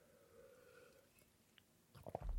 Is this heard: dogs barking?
no